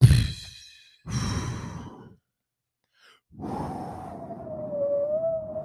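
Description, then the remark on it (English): Three raspy, flatulent blasts: a sharp one, a second lasting about a second, then after a pause a long drawn-out fart with a wavering, whining pitch. No one speaks. “That's Don Lemon farting.”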